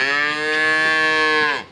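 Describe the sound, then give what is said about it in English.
A single long, loud cow moo, sustained for nearly two seconds with a rich, steady harmonic tone before fading out at the end. “Oh, is that when cows eat grass in a field?”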